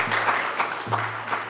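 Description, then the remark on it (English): An audience claps their hands together to thank the Lord, a dense, steady wash of applause, with a low sustained hum underneath that briefly drops out and returns. Nobody speaks. “Come on and clap your hands and tell the Lord, thank you.”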